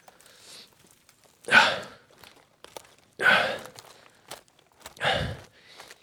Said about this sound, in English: why did you start climbing without stopping the recording? I don't want to listen to your breathing.